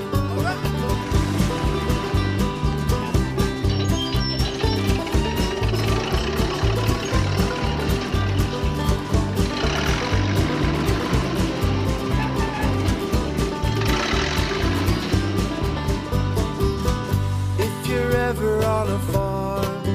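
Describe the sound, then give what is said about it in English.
A heavy tractor engine rumbles steadily and loudly, a deep, chugging drone that keeps running without pause for the whole stretch. “They have great big engines, and this is what they sound like.”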